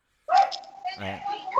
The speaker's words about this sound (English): there's dogs outside. No, you don't say. They're having fun.